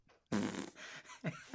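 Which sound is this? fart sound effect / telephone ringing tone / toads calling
fart sound effect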